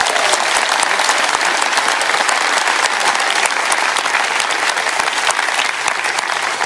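Sustained audience applause fills the whole stretch, a dense, steady patter of many hands clapping at once, loud and close with no voices breaking through.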